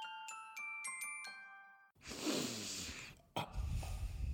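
A few bright chime-like notes ring out, then loud, rushing breaths blow right up against the microphone, with one brief pause between two long, noisy exhalations.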